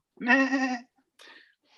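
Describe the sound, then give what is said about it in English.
A goat lets out one loud, wavering bleat lasting over half a second, followed by a shorter, fainter bleat after a brief pause, with no talking. “it is time for your Goat Borg update. Up the goat. Up the goat.”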